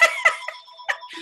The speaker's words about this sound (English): Oh, can you believe that a phone is ringing? No one ever calls my regular phone. I'm sorry. I don't know what we you, do. We just want to pretend it's not happening.